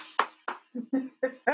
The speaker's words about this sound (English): I agree 100%. And I'm going to clap for that.